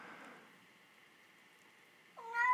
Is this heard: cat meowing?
yes